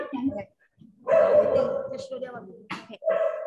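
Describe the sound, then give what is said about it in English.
Several dogs, out of about 30 to 40 kept for adoption, bark and yip in overlapping bursts, with a short pause before a sustained, noisy stretch of barking and a final loud outburst. “So one after another, I have about 30, 40 dogs now here.”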